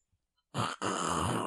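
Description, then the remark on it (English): A loud, forceful nose blow after a moment of silence: a short honking burst, a brief pause, then a longer harsh, breathy blast that runs to the end. “Why are you putting you blowing your nose into the podcast?”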